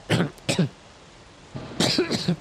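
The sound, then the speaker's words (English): A man acts out a coughing fit mid-sentence: two sharp coughs, a brief pause, then a longer rough burst of hacking, fairly loud with no talking. “And he starts, like, coughing mid-sentence.”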